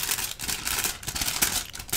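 Steady, crisp snipping of scissors trimming hair in a salon roleplay, a rapid run of bright metallic cuts with slight rustling, at a moderate, even level and no voices.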